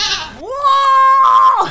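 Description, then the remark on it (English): A single loud goat bleat, rising in pitch and then holding a steady, strained, nasal wail for over a second before dropping off, with no talking. “This story from The Goat Lord. I should have used this sound bite.”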